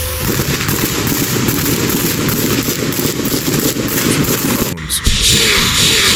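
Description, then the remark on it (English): Dense, rapid gunfire crackles nonstop, shots overlapping into a loud rattling barrage, with a brief sharp break near the end before the firing resumes. “Listen to that gunfire.”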